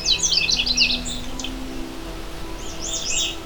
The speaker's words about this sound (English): The Canada Warbler song is loud, clear, and can vary by individual, but generally always has a cheery tone sung from a low perch.